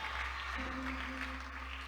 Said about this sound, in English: Mighty clap offering and shout hallelujah to the Lord. Hallelujah.